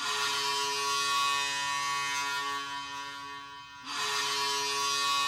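The Boston Bruins hockey goal horn, in the key of C sharp, blares a loud, sustained, steady tone over roaring crowd noise. It breaks off briefly near the end, then sounds again just as loud.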